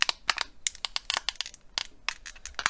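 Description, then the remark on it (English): A plastic water bottle placed over an egg yolk is squeezed to lift the yolk, giving a run of irregular, sharp crackling and crinkling pops that come in quick clusters with brief pauses, moderately loud, with no talking. “And then, all I'm gonna do is take my water bottle, place it over my egg yolk.”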